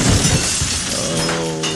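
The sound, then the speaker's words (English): A loud crash of glass and plywood shattering, a dense burst of breaking debris that rattles on for about two seconds with bright ringing shards trailing off at the end. “Was that deer made of glass and plywood?”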